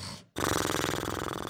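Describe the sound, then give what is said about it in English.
A man's voice imitates his own snoring: a brief breathy intake, a short pause, then a loud, steady rattling snort that buzzes evenly for over a second. “I found out how I snore.”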